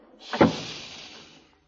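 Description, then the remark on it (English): A broom closet door is pushed shut with a brief scraping swish and a single muffled thud, moderately loud, then a short fading rustle. No one speaks. “Turn on the light and I'll close the door.”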